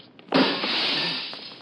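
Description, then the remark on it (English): A ground-level side window of a house is smashed to get in past a locked door: a sudden sharp crack, then a long, bright, hissing cascade of shattering glass that slowly trails off. No voices accompany it. “That sounded loud enough to wake the dead. It may have to. Now, most of the glass is out of the way.”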